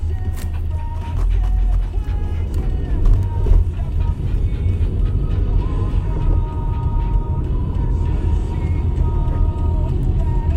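Steady low rumble of a car interior while driving on a grocery run, a constant road drone filling the cabin for the whole stretch with slight shifts in loudness.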